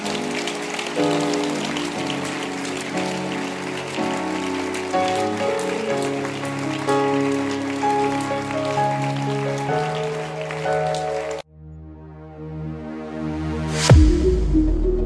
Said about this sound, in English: This is a man who is working. Yeah. He's working. Clap your hands again.